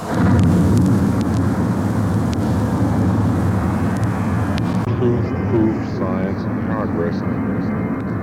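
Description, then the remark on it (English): A deep, continuous roar of a Titan missile launch fills the scene, a loud, heavy rumble that holds steady for several seconds before its upper hiss drops away while the low thunder keeps going. “And now, the Titan, which fills the land and sky with thunder.”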